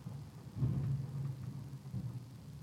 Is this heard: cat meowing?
no